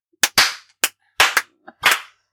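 Loud, sharp hand claps, about eight of them, arriving in an uneven, loose rhythm with short gaps between. No voices can be heard.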